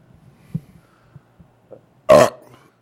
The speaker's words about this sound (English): I'll be blasting burps, and people hate that.